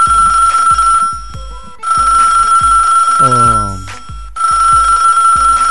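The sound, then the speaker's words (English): A telephone rings with a steady, piercing electronic tone over a thumping background beat, briefly interrupted by a swooping tonal sweep before the ringing resumes. “Let me see who's on the phone line right now.”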